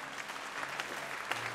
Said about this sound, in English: Come on, you can clap your hands louder than that.